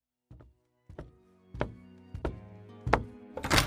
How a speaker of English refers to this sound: And that door is still creaking. We love it,